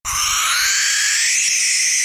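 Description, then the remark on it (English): A barn owl's loud, harsh, breathy screech held steadily for about two seconds, raspy like a drawn-out hissing scream, with no voices around it. “Barn owls”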